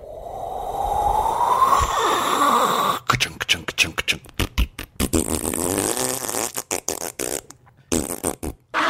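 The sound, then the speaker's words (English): A voice imitates a rain stick as an act-break sound effect: a breathy, rising hum for a few seconds, then a loud hissing shush broken into rapid, uneven crackly bursts, with no words spoken. “as I started to make my pretend rain stick sound effect, I realized that I was just making the shush sound effect”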